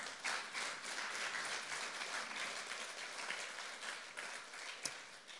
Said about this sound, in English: So I'm glad you're all cheering for Cliff's sobriety of 40 years.